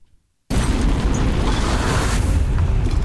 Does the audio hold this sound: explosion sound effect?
yes